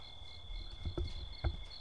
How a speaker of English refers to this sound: Sounds of a still lake at nighttime. Crickets.